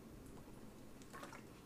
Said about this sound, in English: let me drink a little water